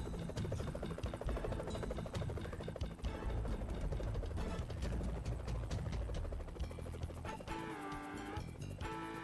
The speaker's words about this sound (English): Like the helicopter's taken off from the water.